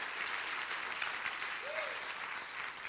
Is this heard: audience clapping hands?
yes